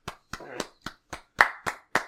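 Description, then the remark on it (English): Hands clap about eight times in a steady, slightly uneven rhythm, each clap sharp and bright, with a faint murmur between a few of the claps, like a small, brief round of applause. “Yeah, a round of applause.”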